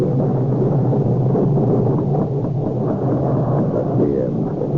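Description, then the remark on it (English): A loud, steady roar of a thunderstorm over the moors, with heavy rain-like wash and deep low rumbling of thunder rolling continuously underneath, unbroken, with no voices. “And then the storm.”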